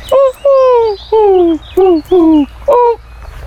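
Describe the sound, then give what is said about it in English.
A wood pigeon coos in a steady run of six soft, falling notes, fairly loud, with short pauses between them and no talking over the calls. “There's the pigeon over there, wood pigeon.”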